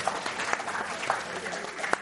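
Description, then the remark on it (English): A crowd applauding steadily, dense overlapping claps forming a continuous wash with a few sharper individual claps standing out, after an answer from the Jeb Bush communications director. “Yes, the Jeb Bush communications director just got applause from that.”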